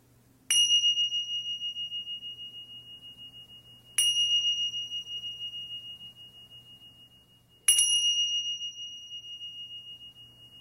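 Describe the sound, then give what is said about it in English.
Three clear meditation bell strikes marking the start of a meditation, evenly spaced a few seconds apart, each ringing out with a bright sustained tone that slowly fades, over a faint low hum with no talking. “The meditation will begin with three bells.”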